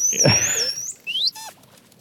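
A dolphin in a video game, placed in an aquarium tank, gives a high, wavering whistle that rises and bends, followed by a quick upward squeak and a short burst of rapid clicking chatter, clear with no talking.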